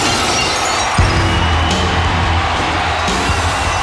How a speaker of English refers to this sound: Whether it's arena of 2,000 or 20,000 or 100,000, they know when that glass breaks, there's a somebody coming out there to deal out a can of world bass.